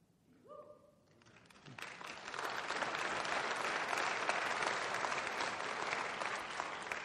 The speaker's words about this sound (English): Now you're probably clapping because, boy, I'm glad we were there. We're in. All right. It's great. Awesome.